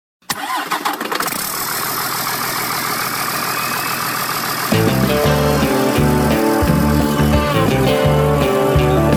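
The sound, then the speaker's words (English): A big old truck engine cranks to life and settles into a loud, steady rumble; about halfway through, music starts playing over the running engine. “Let's go for a ride in this big old truck.”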